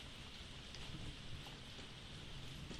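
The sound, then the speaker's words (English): Steady, heavy rain pours down in a dense, continuous hiss with scattered drops pattering on a surface; no voices, just the unbroken wash of the downpour. “Let's finish with the inspiration really quickly, because the rain has caught up with us and it's much stronger than I expected.”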